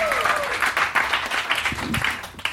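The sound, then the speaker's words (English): A live audience applauds steadily as comedian Jake Fogelnest is introduced, dense overlapping claps at a fairly loud level, with a few faint voices and a whistle-like tone mixed in early. “Clap your hands.”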